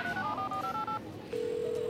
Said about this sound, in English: Hey, phone. Call KT.